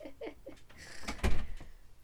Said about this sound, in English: You good? Yeah, I'm just closing the door.